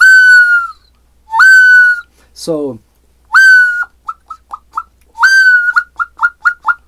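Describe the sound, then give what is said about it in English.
Bright whistles from bird-call instruments, each made to produce the sound of one bird: a sustained steady tone followed by quick rapid chirping bursts, repeated twice, loud, with a brief spoken word between them. “And so they each one produce the sound of one bird.”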